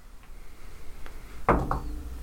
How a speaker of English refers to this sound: A person in uniform knocks on your door.